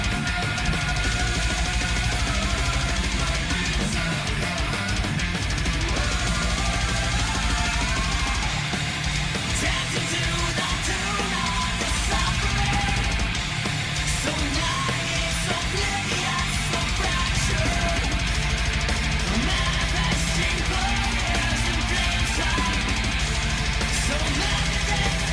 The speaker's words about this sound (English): That melodic death metal vibe in the two of them. Yeah, the power. This is a very much shorter song. I would never have guessed this was going to be the album. I like the harmonies. You know, I like the layers of vocals.